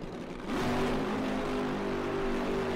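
Matt Hagen's Dodge Power Brokers drag-racing funny car for Tony Stewart's team roars up during its burnout at about half a second, then holds a harsh, sustained high-rev snarl with rising harmonic tones, dominant with no talking.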